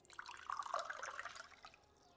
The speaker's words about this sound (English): Crow reaches inside her kasode, producing two small clay cups, one for Yukira and one for herself. She sets them down, then uncorks the small jug hanging from her hip and carefully pours each of them a generous portion of sake.